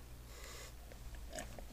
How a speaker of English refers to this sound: Sorry, I was just taking a sip of my water.